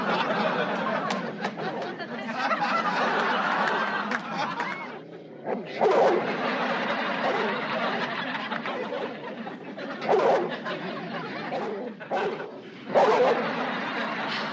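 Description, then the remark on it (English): A large dog, a mall guard dog named Satan that looked like a Rottweiler, barks and growls aggressively, a steady snarling racket broken by sharper bursts of barking every few seconds, with no other sounds standing out. “It turns out that there's a mall guard dog named Satan.”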